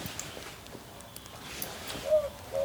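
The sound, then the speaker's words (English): A boobook owl calls faintly at dusk, two short hollow hooting notes near the end, over a quiet outdoor background with no talking. “Ooh, a boobook owl.”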